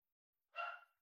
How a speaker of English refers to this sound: One last bark. He's like, oh, sorry, you're on a call. I didn't realize.